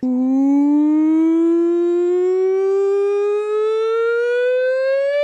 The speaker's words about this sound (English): Have we installed some kind of siren? Or there's is that still a new siren. That is the nonsense siren.